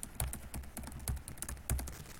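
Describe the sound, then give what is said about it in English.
Rapid typing on a computer keyboard, with irregular clicky keystrokes and a few heavier thumps from the spacebar or enter key, with no voices. “He's typing.”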